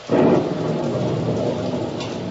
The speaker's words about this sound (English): Squall engulfed us now. The rain was blinding when one couldn't tell where it ended and the ocean began.